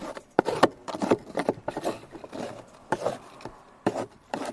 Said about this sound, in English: Here, I'll make some screwdriver sounds. Can you hear this?